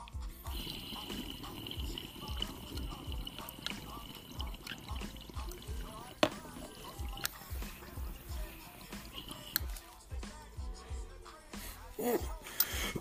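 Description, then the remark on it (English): Continuous bubbling and gurgling of water through a dab rig as someone takes a long dab hit, with a few sharper bursts near the end that may be coughs. “Looks like we're ready for this dab. I'm going in.”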